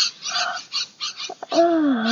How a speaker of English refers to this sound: Oh, can you hear those birds? Yeah. Now that I've opened the... Daddy, shut the window. We have too many birds in our podcast.